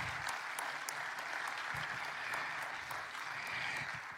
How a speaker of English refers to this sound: Come on, let's give Judge Adams another round of applause.